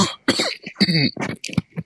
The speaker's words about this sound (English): Sorry, I'm coughing here.